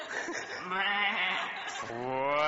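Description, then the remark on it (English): A person imitates a sheep with a wavering, drawn-out vocal bleat, fairly loud, rising into a strained nasal quaver near the end. “can you do an impression, your best impression of a sheep?”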